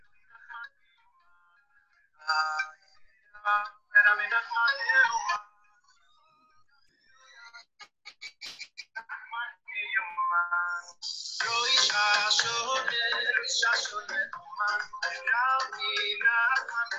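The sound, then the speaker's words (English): Tinny intro music plays through a small phone speaker, starting as short scattered melodic bursts, then swelling into a fuller, continuous tune that fills the second half, with no low end. “We're ready to start. Music!”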